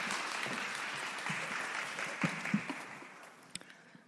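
A crowd applauds steadily for about four seconds, a dense wash of many hands clapping that slowly thins and fades toward the end.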